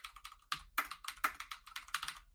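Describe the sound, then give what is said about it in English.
Rapid, uneven typing on a computer keyboard with sharp clicky keystrokes, several hard strikes standing out, fairly loud, with no voices. “I was really hammering on my keyboard there.”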